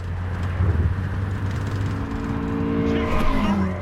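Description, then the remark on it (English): A video game car engine drones steadily, then revs upward near the end with rising, whining pitch. It's loud, with no talking over it. “I can't control the f***ing car.”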